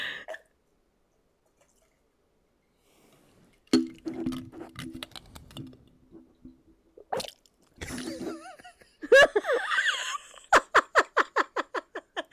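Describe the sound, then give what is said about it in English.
Water is forced through a straw in wet, sputtering bursts with low gurgles, ending in a quick, rhythmic train of about a dozen spluttering pulses, after a few seconds of near silence. “I just blasted water through a straw. That sounds like a worm.”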